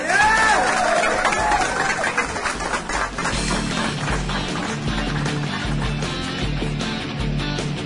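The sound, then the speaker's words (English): Steady applause from an audience for an airsoft medicine blogger, a dense crackle of many hands clapping at a constant loudness, with crowd murmur underneath and a few whistles near the start. “So, yeah, give him a round of applause.”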